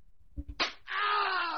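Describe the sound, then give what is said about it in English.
One Hollywood actor slaps another: a single sharp slap to the face lands after a couple of soft thuds, immediately followed by a loud, drawn-out vocal cry that carries on to the end. “But we have all the time in the world to write inane gibberish about articles we didn't even read, or feeling the need to share our own unique perspective on one overly entitled Hollywood actor bitch-slapping another.”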